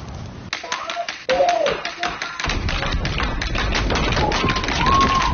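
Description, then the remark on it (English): Hockey sticks bang on pavement in Canada to celebrate healthcare workers, a rapid, uneven clatter of sharp knocks from many people at once. A steady crowd roar with voices fills in beneath the din as it continues. “And in Canada, they do it a very Canadian way, by banging hockey sticks on the ground.”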